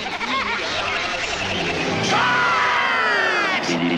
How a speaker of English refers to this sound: Well, it sounds like a crowd.